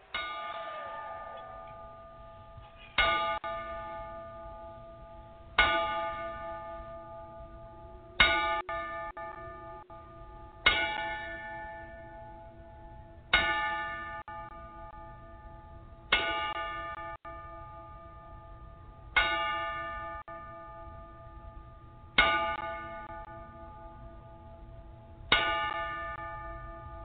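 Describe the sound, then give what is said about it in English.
A bell tolls ten times in a slow, steady rhythm, each loud metallic strike ringing out and fading before the next, with no voices: a ten-bell salute played for wrestlers who died over the weekend. “And we got to play that 10 bell again, because we've got some wrestler deaths from over the weekend.”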